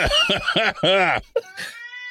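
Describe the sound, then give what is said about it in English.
A cat makes a rapid string of loud meowing cries, several short wavering calls followed by a longer drawn-out yowl, then a fading high-pitched whine. “And is that apparently an animal or a cat?”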